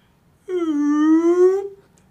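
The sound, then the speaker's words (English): A person's voice imitates a whale call with one long, sustained moaning tone of about a second, pitch dipping slightly then rising at the end, rich in harmonics and fairly loud, with no other talk. “Do you want to hear my whale impression?”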